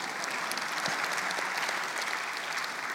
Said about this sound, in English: I knew you wouldn't clap as much for that one.